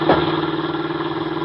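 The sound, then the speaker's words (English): A military police jeep near the Black Forest, driving over a dark road back to its base: the engine runs steadily at a low, rumbling drone, its rhythmic pulsing holding even throughout with a brief swell at the start, and no voices over it. “In a jeep with Corporal Harry Marks, he is returning over the dark road to his base.”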